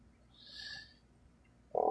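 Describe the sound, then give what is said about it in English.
A pet frog gives a single trilling, chirpy croak lasting about half a second, then a louder, lower croak starts abruptly right at the end. No one speaks. “Sorry, I have a pet frog and he won't shut up.”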